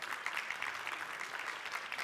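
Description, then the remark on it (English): A church audience at Lakeview Christian Center applauds steadily for a pastor marking 25 years on staff, many hands clapping at once in a dense, continuous patter that holds at an even, moderate level with no talking over it. “the reason they're clapping is because some have actually continued to come to church after meeting with me.”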